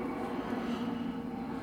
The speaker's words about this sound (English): There's a jet. There is. Yeah. There is a plane.